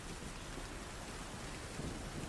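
Steady, dense rain hisses without a break during a thunderstorm, with a low rumbling undertone beneath the downpour. No voices are heard.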